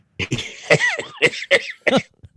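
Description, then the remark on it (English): A man who is still recovering from a cough coughs in a harsh run of about six bursts over two seconds, a few trailing into strained, wheezy voiced sounds before it fades. “still slowly recovering from his cough there, so he can't laugh that much.”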